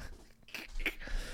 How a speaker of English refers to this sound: What is he chewing on? Oh, he's chewing on the lint roller.